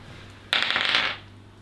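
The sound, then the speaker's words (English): Dice rolled for a charisma check clatter and tumble across a hard tabletop in a quick, rattling burst lasting about half a second, then settle into quiet room tone. No voices are heard. “Give me a charisma check. Can somebody give me a dice, please?”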